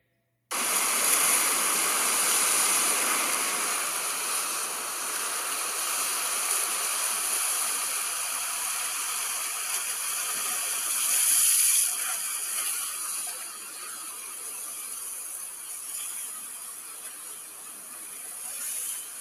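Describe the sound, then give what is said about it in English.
A recording titled 'Beach Wave Sounds, Ocean Waves, Sea Waves, Relaxing Sea Waves' plays as a steady, hissing wash of water noise, fairly loud and continuous with only slight swells, and no voices over it. “It's called Beach Wave Sounds, Ocean Waves, Sea Waves, Relaxing Sea Waves.”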